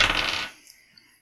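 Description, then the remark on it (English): Dice are rolled for an escape roll in a game, landing on an 8. They rattle and clatter across a table in a quick, dense burst of hard clicks lasting about half a second, followed by two faint ticks as they settle. No voices. “Alright, I'm rolling escape.”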